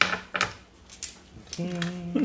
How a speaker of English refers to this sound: For the fun of it, because I'm sure you love to roll the pile of dice, go ahead and do so.